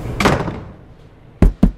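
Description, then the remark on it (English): A door swings shut with a heavy thud and a brief rattling decay, then, after a short pause, two sharp knocking thumps land in quick succession. No one speaks. “Shut the door, man.”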